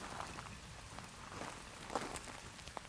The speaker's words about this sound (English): What am I doing out here in the rain? I thought I was just outside.